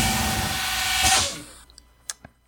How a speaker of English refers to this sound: I put that code in for shiz. It beeps a whole bunch, and then a very well-concealed door slides open. Whoosh.